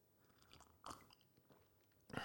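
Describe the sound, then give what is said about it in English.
A quiet slurp of hot coffee as someone tastes it to review it, with two short noisy sips and some faint mouth sounds between them, and no talking. “I love the slurp.”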